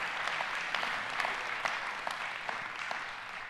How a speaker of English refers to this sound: If you know that's true in your life, would you give the Lord a hand clap and say, thank you, Jesus.